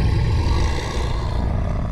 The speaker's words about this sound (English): So you get the Grizzly growl.